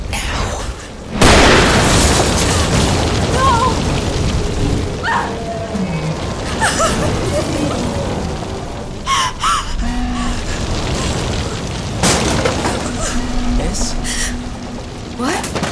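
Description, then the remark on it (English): A house comes apart: a sudden loud crash gives way to a continuous roar of rumbling, cracking and debris, with sharper bangs and snaps bursting through the din at intervals. “The house is coming apart.”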